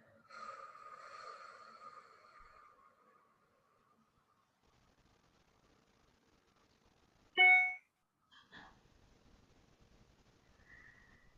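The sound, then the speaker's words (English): During a guided breathing exercise, a long, airy breath lasts a few seconds, then after a quiet pause comes a sharp, loud nasal intake and a softer follow-up breath, with no talking. “Breathe in through your nose or mouth. Really deeply. And breathe out.”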